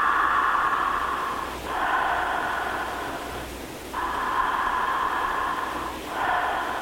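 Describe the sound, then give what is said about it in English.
Slow, deep breaths drawn and released through the mouth in a guided breathing exercise, each a long airy whoosh that swells and ebbs like a wave, with short pauses between cycles and no talking. “And just remember that the breath is like a wave. A wave comes into shore, and then it melds back into the ocean. So it sounds like...”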